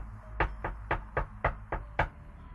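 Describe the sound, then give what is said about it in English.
Seven evenly spaced knocks against wood coming from an attic above, quick and steady, at a moderate, somewhat muffled level over a low background hum, with no voices. “From the attic, you can hear, like, something knocking against wood.”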